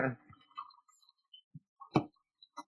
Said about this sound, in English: my coffee machine goes nuts a little bit. If you hear. Wait. Shuts down.